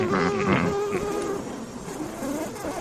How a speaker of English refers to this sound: Murder hornets attacking a beehive. No. Murder hornets are no good. They weren't good before they were killing bees. Now they're even worse.